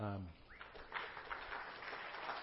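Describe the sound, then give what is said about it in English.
A crowd claps for a couple who are to marry in September, a steady, dense patter of many hands that keeps going and stays fairly loud, after a brief voiced sound at the start. “Worthy of a clap.”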